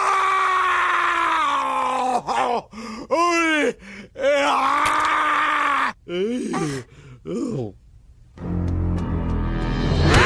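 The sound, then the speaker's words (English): A man screams and groans in pain, loud, in a string of drawn-out wavering cries broken by short gasping pauses, with no words spoken. “Nay, just keep studying. I'll scream this out.”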